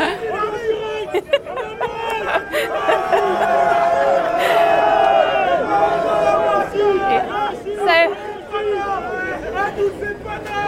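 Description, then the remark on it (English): An excited crowd of fans waiting for Messi's plane to arrive chatters over one another in a dense, lively babble, with overlapping voices rising and falling steadily throughout and occasional bursts of louder exclamation. “Now, Messi, we've got some fans who are starting to think that they've seen a plane, but we haven't seen anything quite yet.”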